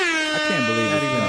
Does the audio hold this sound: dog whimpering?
no